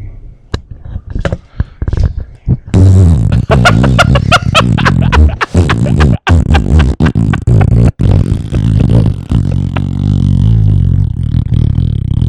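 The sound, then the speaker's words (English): A few soft clicks, then a loud, sputtering fart noise blown right into a fart mic before spraying a fart-prank spray, a voice imitating flatulence with a buzzy, crackling rasp that runs on for nearly ten seconds. “So if you're going to spray this, you have to make a sound into the fart mic before you do it.”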